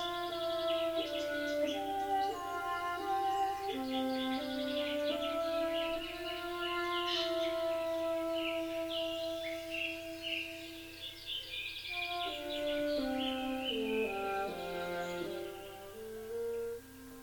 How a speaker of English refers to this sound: He could also hear Little Red Robin chirping away with his little whistles.